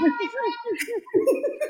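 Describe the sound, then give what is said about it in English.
A toddler babbles in a quick string of high, wavy, sing-song squeals, continuous, with short dips between bursts and no other voices. “Okay, now we've got a vocal range from the toddler.”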